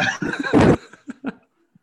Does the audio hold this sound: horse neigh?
yes